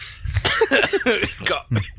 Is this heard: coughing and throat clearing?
yes